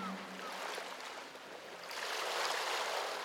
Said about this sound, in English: The gentle sound of wavelets on the shore soothes your thoughts as you take in the beauty of this seascape. The water is clear, like melted turquoise.